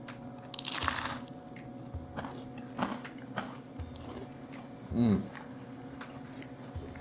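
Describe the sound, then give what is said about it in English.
A loud, crisp bite into crunchy seasoned tomato, eaten without cottage cheese, then a series of sharper crunches at irregular intervals as it is chewed, with a short murmured hum partway through. “Okay, now the bite.”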